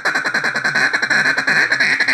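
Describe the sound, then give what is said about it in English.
A duck call blown in a fast, steady run of raspy quacking notes, loud and continuous for about two seconds, with no talking. “And you mix that with some lonesome hens and some quacks within that.”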